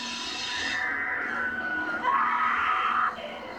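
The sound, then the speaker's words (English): A chainsaw runs in a loud, continuous whine as it goes into Franklin, revving to a higher, harsher pitch partway through before dropping back. No voices are heard. “You can hear the chainsaw going into Franklin.”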